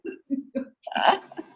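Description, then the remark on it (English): A sneeze: three short, breathy catches build up before one loud, sharp burst of air, on its own, with a brief trailing exhale. “Bless you.”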